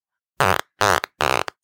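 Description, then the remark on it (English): Three loud, buzzy fart noises from a frog character in a video game, in quick succession, each a short, sputtering burst about a quarter second long, with no talking. “Fart. The frog farts?”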